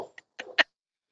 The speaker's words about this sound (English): Is that your cat that's trying to talk to you? Yeah, I didn't realize he was under the couch, so I'm going to kick him out.